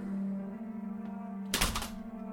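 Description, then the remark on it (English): A door lock is undone with one sharp mechanical clunk midway through, over a steady low electrical hum. No one speaks. “I jumped back into bed and under the sheets just as the lock was coming off my door.”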